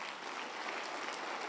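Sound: audience clapping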